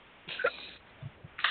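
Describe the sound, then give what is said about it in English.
Two short, abrupt hiccups, each a sharp breathy gulp, separated by about a second, with a couple of soft low bumps between them and no talking. “Somebody's got hiccups.”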